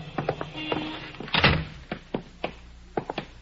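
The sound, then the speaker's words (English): The door of a settlement house building is opened and shut, with a series of sharp latch clicks and clunks and one fuller thud of the door swinging closed, with no voices. “Here, we go in this door.”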